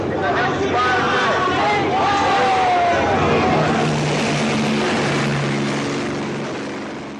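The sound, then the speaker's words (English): A helicopter's steady, throbbing drone fills the air above a noisy crowd of protesters in a plaza at the University of California, Berkeley, as it drops CS gas in a giant cloud; loud at first, then gradually fading away toward the end. “places like the University of California, Berkeley, where famously a helicopter flew over a crowd in a plaza and dropped CS in a giant cloud out of the helicopter.”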